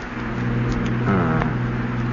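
A steady, droning car engine hums along at a constant pace, with a brief rise in pitch partway through, as if the vehicle shifts or accelerates slightly. No voices are heard.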